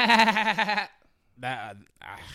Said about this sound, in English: That was a goat. That's SpongeBob. Huh? That's SpongeBob. That was a goat.